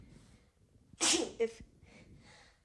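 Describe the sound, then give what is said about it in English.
A single sharp sneeze bursts out, loud and breathy with a quick follow-up snort, set against faint background murmur before and after. “Sneezed on the truth.”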